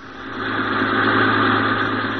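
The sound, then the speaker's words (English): The engine of a free sightseeing bus run by the local Chamber of Commerce on a city tour runs at a steady idle, a continuous low hum with a faint vibrating rumble that swells slightly in loudness before settling, with no voices present. “So let's go back a few hours and board one of these buses as it makes its way around our glamorous town.”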